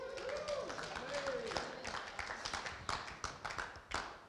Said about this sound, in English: Oh, look, he's ready. Round of applause.